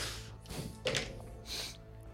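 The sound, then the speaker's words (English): Dice being rolled for damage drop onto a surface with a hard clack, followed by a few lighter clattering taps as they tumble and settle, over a low steady background hum. “Drop dice.”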